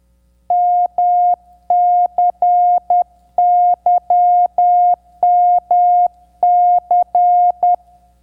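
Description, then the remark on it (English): A single steady, mid-pitched tone keyed on and off in Morse code, a clear irregular pattern of short dots and longer dashes with brief gaps, loud with no one speaking. “Morse code. A series of dots and dashes that most of us only know from seeing it on film or learning it for a merit badge.”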